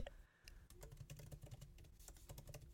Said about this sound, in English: Sorry if you can hear my keys click clacking away.